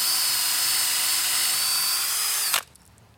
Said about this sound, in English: Okay, one row down. Nice. So your plan is to drill all the holes and then insert the dowels.